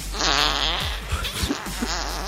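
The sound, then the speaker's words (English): A fart sound effect plays from an Alexa smart speaker, a drawn-out wavering blat with buzzy harmonics and a few sputtering bursts near the end, fairly loud. “Number one on the thing on the list was, well, kids asking Alexa, Alexa, fart.”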